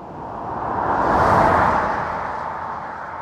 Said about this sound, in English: I covered it in a furry much bigger than it, meant for a full blimp, and placed it down about 15 feet from the side of the road. I hit record and walked away. I was going to get some really great traffic recordings that were going to be super useful.